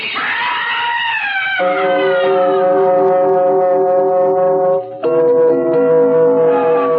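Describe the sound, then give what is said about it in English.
An ambulance siren wails loudly and continuously, rising at first and then holding a steady, harsh tone, with a brief break near the end before it resumes. No one speaks. “You ambulance boys made good time.”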